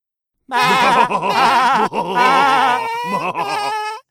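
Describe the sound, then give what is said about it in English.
Goats bleat loudly and close by in a continuous run of quavering, nasal calls lasting about three and a half seconds, with brief breaks between overlapping cries and no talking. “Yes, the third goat trotted up to meet his siblings, and they all munched on sweet clover and laughed at how wisely they defeated the mean troll.”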